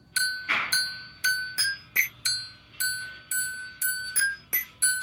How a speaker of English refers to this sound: So it's a guy using a little multi-tool or an Allen wrench. Is that what it's called? Yeah, it's an Allen wrench. It's an Allen wrench to hit drill bits.